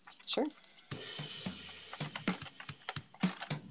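Rapid, irregular clacking of keys on a computer keyboard, fairly loud, with sharp strikes arriving in uneven bursts over a faint background hum.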